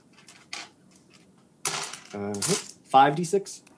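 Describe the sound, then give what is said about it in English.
Five six-sided dice, rolled for thunder damage in a tabletop role-playing game, clatter and rattle across a hard surface in a busy burst of clicks after a few faint taps, with vocal sounds overlapping the clatter. “And all right, roll 5d6 thunder damage.”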